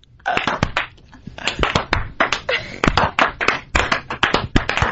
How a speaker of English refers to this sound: That slow clap.